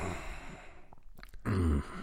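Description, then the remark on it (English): A short, forceful exhale through the nose at the end of a spoken statement, one loud breathy burst after a quieter stretch of soft breath noise. “I had an air of authority by breathing through my nose at the end of my statement.”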